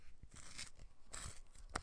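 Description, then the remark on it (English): A pencil being sharpened in a pencil sharpener: a series of uneven, gritty scraping crunches in quick succession, fairly quiet, with no talking. “It's a pencil and a pencil sharpener.”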